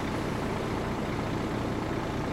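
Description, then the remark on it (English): A truck that has just pulled up idles, a steady low rumble with a constant drone that doesn't rise or fall, and no voices over it. “you went to the wrong truck. This one just pulled up.”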